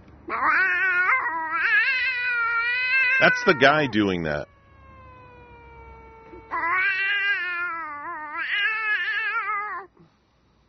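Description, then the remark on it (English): A man imitates a cat with loud, drawn-out yowling meows in two long bursts, separated by a quieter fading wail. A voice speaks briefly in the middle. “He basically imitates a cat, and he's pretty darn good at it.”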